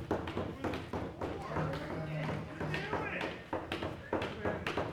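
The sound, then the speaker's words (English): People repeatedly knock on and rattle a door without opening it, a fairly loud, irregular series of taps and thumps, with voices murmuring underneath throughout. “You guys start kind of rattling out, knocking on that door a little bit, trying, don't open, just try to rattle.”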